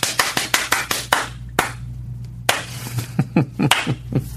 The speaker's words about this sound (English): You know, a lot of people do that slow clap. I'll start with a fast clap. The Brubaker clap. And then slowly make it a slow clap. So I'll start fast.